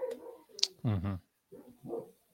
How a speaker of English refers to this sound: You guys hear my dog's cameo at the moment? Yes. Let's go. Yes. Yeah, let's go. We got a Brady cameo.